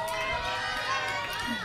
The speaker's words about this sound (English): I like all the family cheering on going over there.